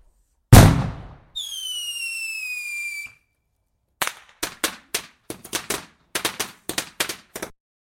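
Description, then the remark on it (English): A loud fireworks bang is followed by a long shrill whistle sliding downward, then a rapid string of sharp crackling pops, loud, with no voices. “Do you live in Ireland and want to use fireworks?”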